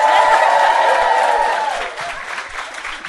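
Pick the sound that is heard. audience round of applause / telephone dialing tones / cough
audience round of applause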